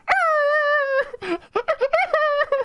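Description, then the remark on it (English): A voice imitates a dog's whine: a long, steady, high-pitched whimper followed by a run of shorter, wavering whines and yelps, fairly loud. “right now, one of my dogs, Jojo, is just whining his ass off”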